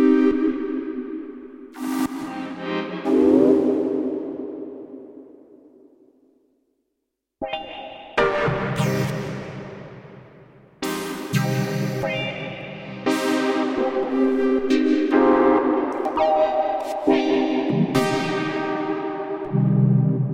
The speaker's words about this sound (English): We jump across the synth too, and this has more of our lead sort of sounds.